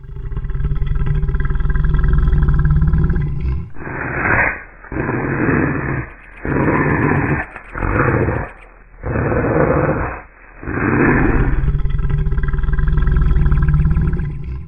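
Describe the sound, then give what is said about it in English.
A deep, rumbling monstrous, unholy growl rolls out in the mist for several seconds in broken surges, loud, with a dense low roar underneath and no voices. “A monstrous, unholy growl rumbled out in the mist.”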